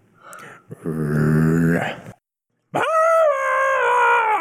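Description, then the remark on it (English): A person imitates a dog with two drawn-out vocal cries, first a low, rough whine-like howl, then after a brief pause a higher, steady howl held loud. “Wagging tail insistently, then lowers ears and growls.”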